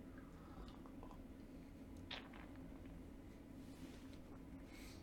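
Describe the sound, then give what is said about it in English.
A single quick sip of Bancha green tea, golden in colour, a brief soft slurp over a steady low background hum with a few faint mouth sounds and no talking. “And let's just have a sip.”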